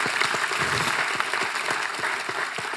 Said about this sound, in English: We can clap for that, amen. That's awesome.